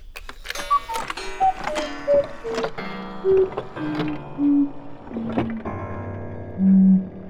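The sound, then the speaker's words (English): A malfunctioning cuckoo clock, its little bird faded from a once bright orange, blue and yellow, lets out a string of warbling, off-key hoots that sink steadily lower in pitch, each tone paired with a sharp mechanical clack, loud. “stared fiercely at the cuckoo clock that was letting out the terrible sound.”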